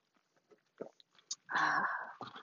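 A few faint mouth clicks, then a loud, airy slurp as someone sips water, followed by a shorter second sip. No one speaks.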